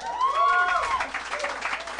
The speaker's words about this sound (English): This is a smattering of applause. Yeah, but an enthusiastic small portion of our crowd, like seven people, really were into that.